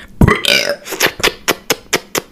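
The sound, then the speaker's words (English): A loud burp opens with a deep rumble and a throaty drawn-out tail, followed by a string of short, evenly spaced breathy bursts. “I'm gonna burp.”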